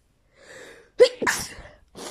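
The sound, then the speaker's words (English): A single loud sneeze bursts out after a soft, breathy inhale, followed by a brief sniff; no talking. “And sorry, I need to sneeze.”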